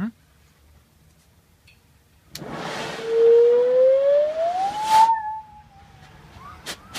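A lighter clicks inside a giant glass of isopropyl alcohol, then a sudden roaring whoosh of ignited alcohol vapor lasting about three seconds, with a whistling tone that rises steadily in pitch before cutting off, followed by a few faint clicks.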